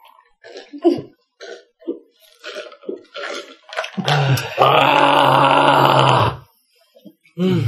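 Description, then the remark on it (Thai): A person imitates the MGM movie-studio lion roar: a few short throaty grunts, then one loud, raspy, sustained roar lasting about two seconds before cutting off. “นี่เป็นเสียงคำรามแบบสไตล์เขาเรียกอะไรนะค่ายไหนนะที่เป็นสัญลักษณ์สิงโตอ่ะ”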